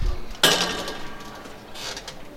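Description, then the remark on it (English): Heavy doors of a Bellman hangar give one loud metallic clang that rings on with a resonant, decaying hum, followed by a softer scraping rattle. No one speaks. “You should hear the doors going.”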